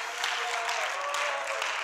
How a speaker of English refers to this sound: Oh, somebody clap like you believe it.